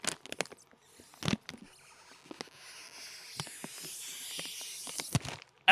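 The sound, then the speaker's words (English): A Snickers candy bag being opened: sharp plastic crackles and pops over a steady crinkly rustle, growing busier toward the end with a bright snap. No one speaks. “So, we're going to start with the Snickers. I'm going to open this up. I'm going to ASMR it.”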